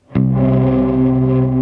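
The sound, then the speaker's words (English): A guitar chord struck once through a reverb unit on its reverse shimmer setting, swelling into a thick, sustained wash of reverb sent an octave down. It rings steady and loud with no voices. “And when we were talking about the cave and shimmer verb kind of thing earlier, this thing does like a reverse shimmer verb, and that's the setting that I have it on right now.”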